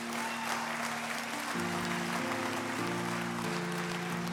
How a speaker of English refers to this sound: Amen. Somebody give the Lord a hand clap today.